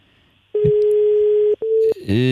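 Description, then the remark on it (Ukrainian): A steady telephone line tone after a caller's call drops sounds loud: one long beep of about a second, a short gap, then a shorter beep, before a voice begins speaking. “Зірвався цей дзвінок.”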